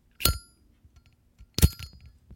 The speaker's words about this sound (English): Well, you should spark that up again. Your Zippo.